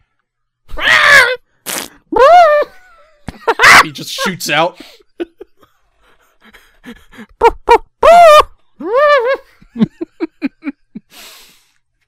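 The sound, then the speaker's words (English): A trumpet is blown in rough, blaring bursts that swoop up and down in pitch, like an elephant's call. Several loud honks are separated by pauses, and people talk between them. “thank you for the trumpet time”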